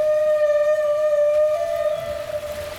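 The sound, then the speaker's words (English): A long, steady whale vocalization, one sustained tonal cry with a bright harmonic ring that holds nearly level and fades slightly toward the end, heard clearly with no voices. “And then I thought, ah, whales.”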